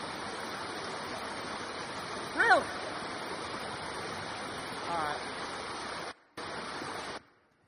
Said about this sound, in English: Now, this is a brook. Now, you got to realize, brooks are shallow water that run fast. So here's a brook. A little bit better, but still. I mean, sleep? Sounds like static on a television when cable goes out.